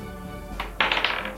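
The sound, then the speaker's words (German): Dice are rolled for a persuasion check, clattering onto a hard tabletop: a single knock followed by a quick run of bright rattling clicks as they tumble and settle, fairly loud, with no talking. “Würfel auf überzeugen.”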